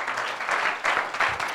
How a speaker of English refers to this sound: Let's give him a good hand clap of praise as we're seated.